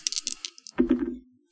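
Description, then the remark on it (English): Two six-sided dice (2d6) rattle with a quick run of sharp, bright clicks, then tumble out in a heavier, rumbling clatter that fades over a fraction of a second, landing on a 1 and a 6. No one speaks. “So that's 2d6. Let's go. Delicious dice foley.”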